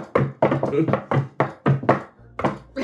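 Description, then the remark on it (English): A secret-knock rhythm of about nine loud thumps on a door, tapped in an uneven pattern with brief pauses, with voices overlapping the knocks. “So now I want everyone to remember that the society has a secret knock.”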